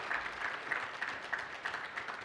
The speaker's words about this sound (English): He's done a phenomenal job with us on social media and so forth. Our internet presence is great. Again, y'all give him another round of applause. Go ahead. Yeah, phenomenal job.